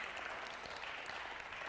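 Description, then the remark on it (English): A worshipping crowd claps hands together in praise of Jesus Christ in a dense, steady wash of applause, many overlapping claps blending into a continuous crackling roar at even loudness with no speech. “Somebody put your hands together today and give Jesus Christ a hand clap of praise.”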